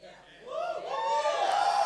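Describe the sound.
A church audience at Uni Hill cheers, many voices rising together into a sustained, swelling whoop that builds in loudness after a quieter start and stays strong to the end.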